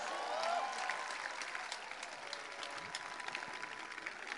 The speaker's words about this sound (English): Clap for Jesus.